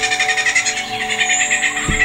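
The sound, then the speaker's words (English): A bird sings a rapid, continuous run of repeated high chirps, mimicking the calls of more than 20 other bird species in one song, clear over a steady, droning background hum. “More than 20 different bird species in one song.”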